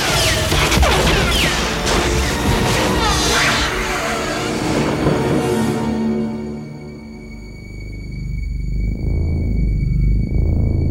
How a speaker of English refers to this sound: A slow synth pulse, rushing wind, electricity, whooshes.